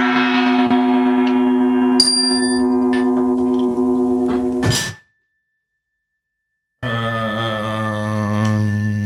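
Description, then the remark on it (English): A loud, resonant gong rings with rich shimmering overtones, a sharp metallic hit cuts it off into a brief silence, then another deep ringing tone swells back in. No one speaks. “Gong.”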